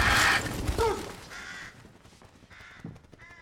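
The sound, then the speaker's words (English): A crow-like bird caws a few times as it flies from a hole in a wall, harsh calls that start loud, then fade and grow fainter as the bird flies away; no one speaks. “As he investigates, a gasping girl appears briefly behind him, but when he turns, he sees nothing, and a bird flies from a hole in the wall.”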